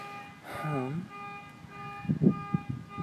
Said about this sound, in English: I think it's gonna be a fucking alarm. It's gonna be the whole loop, the whole.